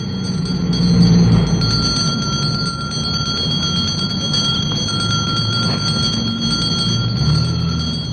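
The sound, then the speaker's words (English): A street Santa Claus rings a handbell continuously in rapid, steady shakes, its bright metallic tone held throughout, over a low rumble of street noise and traffic. “We not only see Santa Clauses in the department stores, but there are many, many Santa Clauses in the streets, ringing bells like this.”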